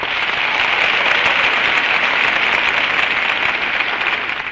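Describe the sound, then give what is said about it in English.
A studio audience of the Chesterfield radio program with a bandleader breaks into sustained, dense applause with cheering mixed in for a singer, a loud steady wash of clapping that holds for several seconds and tapers slightly at the end. “And that's my cue for a cheer of our own for our Chesterfield girl, lovely ….”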